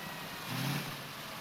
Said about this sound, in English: We begin outside of a motel and a rig pulls up. Is that right term? Rig? Do you say rig? Sure. Rig, tractor, power unit. They have a lot of names.